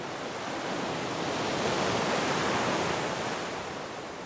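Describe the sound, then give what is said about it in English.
Steady ocean surf washes in at Pacifica, a town just south of San Francisco, as a broad, hissing roar that swells gently toward the middle and eases off again, with no voices present. “But every time I saw that ocean and smelled the air and heard it, I felt better.”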